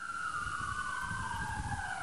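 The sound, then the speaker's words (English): A loud emergency vehicle siren wails steadily during a police press briefing after a shooting, its tone sliding slowly downward, over a constant low rumble of engine and traffic noise, with no voices audible. “but she's being drowned out by the sirens.”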